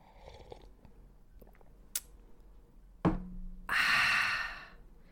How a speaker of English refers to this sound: I'm here on a Monday, sipping on this coffee. You're going to hear me sip now.